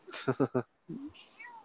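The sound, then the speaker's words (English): A person's voice imitates an angry cat with three quick, harsh yowls in a row, followed by a short lower grunt and faint, thin high tones trailing off. “It's grabbing your cat and then throwing him on top of your other cat.”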